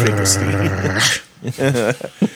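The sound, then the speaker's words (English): A man imitates a dog growling, a low, gravelly rumble held for about a second, fairly loud, followed by a short burst of talk. “Look who's coming into the courtroom. It's the dog.”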